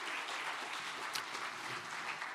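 audience applause

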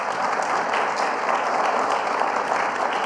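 audience applause welcoming speaker

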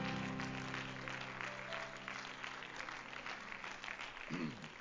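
audience clapping hands

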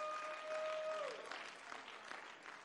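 audience clapping hands

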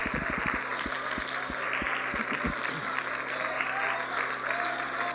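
audience clapping hands

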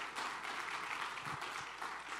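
round of applause

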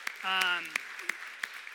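round of applause

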